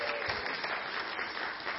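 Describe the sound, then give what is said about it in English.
An audience claps for itself after joining in a poem, a steady, dense, even wash of many hands with no distinct individual claps standing out, holding at a constant loudness throughout the short burst. “Oh, give yourselves a round of applause.”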